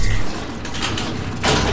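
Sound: door opening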